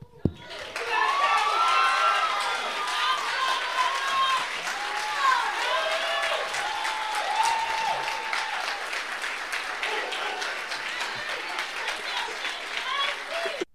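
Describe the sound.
An audience bursts into sustained applause, dense rapid clapping mixed with whoops and cheering voices, holding at a steady, loud level throughout before ending abruptly.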